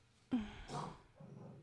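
A dog named Miss Lady barks a few times in short, uneven bursts, sounding fairly faint, with no one talking over it.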